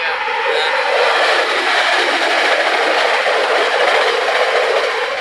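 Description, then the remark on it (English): A short train rushes past, its loud, steady roar and rattle filling the whole stretch without letting up. “Not too bad, that was a short train.”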